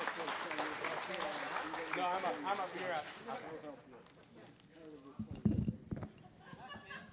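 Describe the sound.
An audience applauds and cheers steadily for several seconds as a debater representing camp counselors is introduced, a dense wash of clapping mixed with whoops and shouting voices, fading slightly toward the end before a brief thumping swell.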